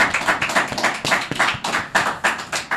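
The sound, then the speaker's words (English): A group of people claps steadily, a dense patter of overlapping hand claps with sharp, bright attacks rising and falling in loud bursts, with no talking. “So, and thanks guys for clapping.”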